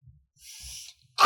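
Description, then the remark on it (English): A single sneeze: a breathy, hissing intake builds for about half a second, then a sharp, loud burst of air explodes at the end. No one speaks. “Bless you.”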